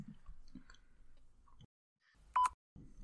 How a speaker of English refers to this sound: I should have finished chewing this by the time you've introduced it.